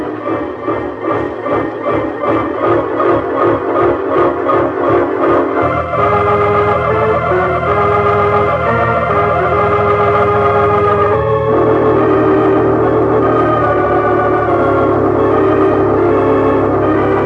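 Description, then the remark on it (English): A train pulls in with a steady rhythmic chugging that gives way to long, loud, sustained whistle tones holding over the rumble. No one speaks. “Here comes the train.”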